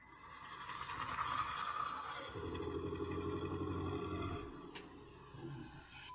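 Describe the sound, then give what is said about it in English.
A harsh, breathy hiss, heard by a hiker on a path in eerie, mist-filled air, gives way to a deep, rumbling guttural growl that holds steady for a couple of seconds before fading, all fairly loud with no talking. “At first, it seems to be a strange hissing sound, but quickly turns into a deep, guttural growl.”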